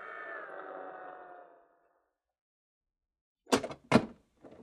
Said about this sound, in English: Look, the door is opening, but so slowly.